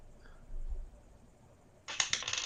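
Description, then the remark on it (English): An eight-sided die is rolled to add to an attack roll in a game: a brief soft low thump and quiet background noise, then the die clatters across a hard tabletop in a quick burst of sharp rattling clicks near the end, fairly loud, landing on an 8. “That's only 5, but I'm going to use one of my dice to add a d8 to that.”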